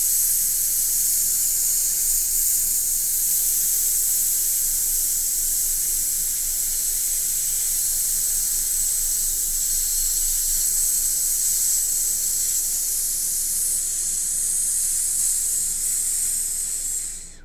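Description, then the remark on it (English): A voice produces a steady, breathy hiss, a bright high 'sss' sound made gently after an in-breath, carrying on evenly for the whole stretch with no talking over it. “So now you're going to aim for 5 just nice consistent hiss bursts.”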